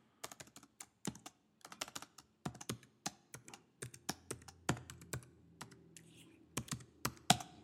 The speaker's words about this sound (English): You know what else is cool is you trying to type in this password. I know. God damn it. Wow. So this is happening? Can you hear those keys?